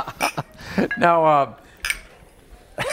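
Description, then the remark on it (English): Glasses clink together in a toast, a few bright taps scattered across the moment, with a brief voiced exclamation sliding downward in pitch in the middle. “Cheers, making things happen.”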